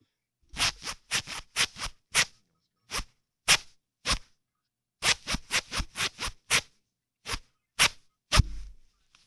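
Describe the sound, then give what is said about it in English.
A zipper is zipped up and down in quick, rhythmic strokes following the beat of a hit song in a guessing game, bursts of rapid zips separated by brief pauses, fairly loud with no talking. “Because I don't want him to zip his, you know, his thing in his zipper.”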